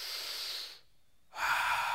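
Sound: deep inhaling breath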